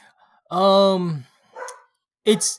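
A dog lets out one long, drawn-out tonal bark, then two shorter, rougher barks after brief pauses, loud with no one talking.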